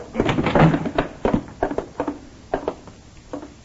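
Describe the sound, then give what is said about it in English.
Several sharp knocks on a wooden door come in uneven bursts, a dense flurry at first and then spaced pairs of raps, fairly loud with no voices. “Please knock before entering.”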